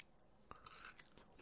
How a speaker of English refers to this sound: But now we'll go ahead and give it a try. He's chewing. He's not dying, which is a good sign.